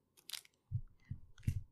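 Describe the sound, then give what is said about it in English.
Crunching on hard candy pieces of a Smarties candy necklace, hard candy on a string, with three or four firm bites and crackles in a quick uneven rhythm, fairly quiet with no talking. “Jewelry you can eat. A good crunchy jewelry.”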